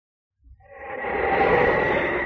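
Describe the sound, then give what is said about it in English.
Howling wind over the snow-covered wild Northwest, opening the 1950 radio show Challenge of the Yukon, rises quickly out of silence into a steady, loud rush of noise with a faint whistling tone running through it, and it holds without voices. “Now, as howling winds echo across the snow-covered reaches of the wild Northwest”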